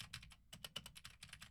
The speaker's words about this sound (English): Now I'm typing on a keyboard with Gateron Blue switches to see how much of my voice versus how much of the keyboard it picks up. And for all the gaming girls and boys out there, I'm typing on the sad W and spacebar keys.